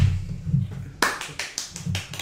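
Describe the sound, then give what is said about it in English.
A quick run of hand claps in response to a comedy bit, about six sharp, bright smacks in an uneven rhythm, starting after a second of low, muffled rumble. No one speaks. “We're clapping because of the comedy.”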